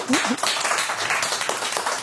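An audience gives a steady round of applause, dense overlapping claps forming a continuous wash of noise for a couple of seconds, with a brief vocal whoop near the start.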